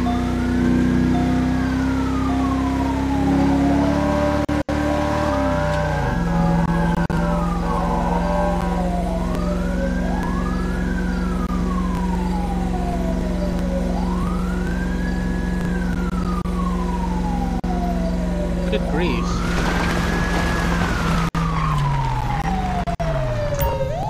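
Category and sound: vehicle, emergency vehicle siren wailing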